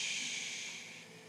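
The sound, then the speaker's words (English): An audience, asked to take a deep breath and let some steam out, exhales together in one long, breathy whoosh, a soft rushing hiss that slowly fades over a second or so, with no talking. “Again, take a deep breath. Just let some steam out. Everybody, come on.”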